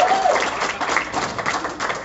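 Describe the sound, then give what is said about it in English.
An audience at the Wisecrackers comedy club applauds steadily as the MC is welcomed, a dense, even wash of many hands clapping at moderate loudness, with a brief high whistle or voice at the very start. “Keep clapping for me.”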